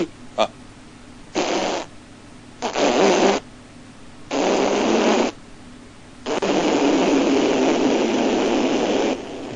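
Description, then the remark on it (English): A string of loud, raspy fart noises in uneven bursts, each longer than the last, ending in one long drawn-out blast lasting about three seconds. No one speaks. “which is like, if your grandma had impacted farts from 40 years and she just went...”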